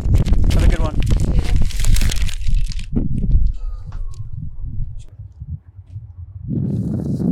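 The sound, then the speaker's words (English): Wind blows in rough, rumbling gusts that buffet the microphone, easing into a quieter stretch with scattered crackles before surging loudly again near the end. “Kind of windy, huh?”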